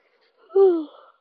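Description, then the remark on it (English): A single breathy yawn, about half a second long, whose voiced tone slides downward before trailing off into an airy exhale, with no other sound around it. “I am really sorry about the yawn, and please do not let this turn you away.”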